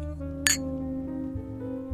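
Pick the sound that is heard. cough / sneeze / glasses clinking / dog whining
glasses clinking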